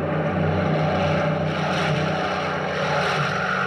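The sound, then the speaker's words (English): Engines of about six low-flying German warplanes drone loudly and continuously as they approach a warship at sea, a dense roar with a low, steady throbbing hum underneath and no voices, holding at an even level throughout. “Now the German planes which got that ship are flocking towards us.”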